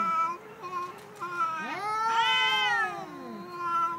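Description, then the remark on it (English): Blueberry the cat meows in a drawn-out, wailing way, a couple of shorter calls leading into one long, rising and falling yowl. No one speaks. “Blueberry, Nick's look weird cat.”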